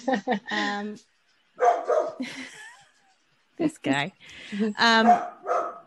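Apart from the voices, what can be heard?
dog barking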